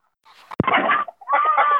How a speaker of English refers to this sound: Here we are collecting eggs, and these chickens, they're kind of bragging. I don't know how peaceful exactly they're sounding,